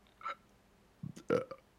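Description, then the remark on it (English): A guttural burp: a brief low croak followed by a louder, throaty belch, with a small breathy sound just before, and no talking around it. “Burp That's to that. What I think of that.”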